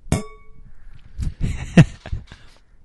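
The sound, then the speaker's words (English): Glasses clink together in a toast with drinks in an apartment in Jersey City: one bright, ringing clink that fades out slowly, followed by a scatter of softer knocks and clatters. No one speaks. “Let's do another toast.”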